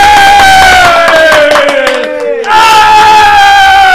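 A loud crowd roars and cheers as a guest is welcomed, with scattered clapping and sustained whooping voices, briefly dipping midway before surging back at full volume.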